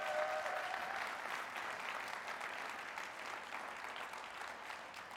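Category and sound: crowd, audience applause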